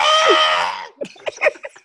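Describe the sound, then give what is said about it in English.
A person lets out a loud, sustained imitation scream lasting about a second, followed by a few short, choppy vocal bursts. “They come in there screaming.”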